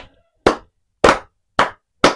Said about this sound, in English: Putting my mic down real quick. Clap it up.